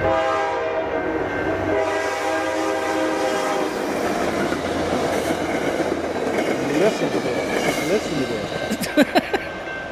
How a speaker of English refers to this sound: Listen to this. Are you living on a train track? I think it might be train time. Oh, it's train time.